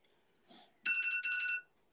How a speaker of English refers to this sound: Oh, hello. An alarm going off. Now I try everything to be quiet. I put myself on Do Not Disturb and now my iPad is going off. Nice. Excuse me. Please hold for these messages. Oh, it's the timer that I put on for 90 minutes away.